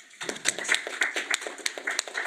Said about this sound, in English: So I'd like us to also give a round of applause